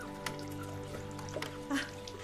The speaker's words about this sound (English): Mama, you're wasting the water. That's not like you.